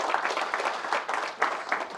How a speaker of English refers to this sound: I thank you for your time. Can we give Herb a round of applause, please?